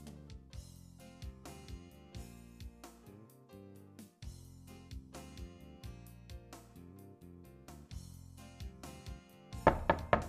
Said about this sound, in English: I hear someone knocking on a door.